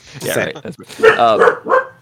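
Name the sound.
dog barking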